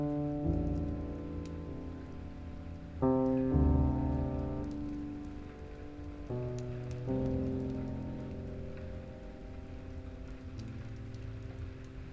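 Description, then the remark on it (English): Steady, soft rainfall with scattered droplet ticks, blended under sustained, low musical chords that shift a few times. No one speaks. “Feel the tiny drops of water come down upon you and land upon the crown of your head.”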